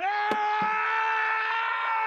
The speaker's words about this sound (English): And then he let out this scream. I thought, wow, this is strong. I mean, this is like Aragorn is like just in total grief at what's just happened to Merry and Pippin.